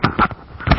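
A sneeze: a short breathy intake followed by a sharp, noisy burst, with a second burst about half a second later, moderately loud and with no talking over it.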